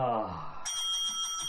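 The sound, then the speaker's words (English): A voice sounds briefly, then a single bright, high-pitched bell rings out and keeps sustaining with a shimmering metallic tone to the end. “Callum also says get your bell ready because this is genius.”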